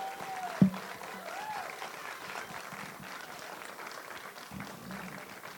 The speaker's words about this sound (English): Please, everyone, please, let's give a round of applause to our guest,